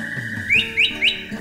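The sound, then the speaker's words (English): A bird chirps and whistles three times in quick succession, each call a bright upward-sweeping note, evenly spaced, over a faint steady background tone. “You've seen birds.”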